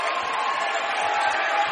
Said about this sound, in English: Tied at 23, and the crowd's getting into it.